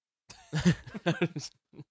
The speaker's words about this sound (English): Whose fucking dog is this? Shut that fucking dog up! We are podcasters! You will respect us!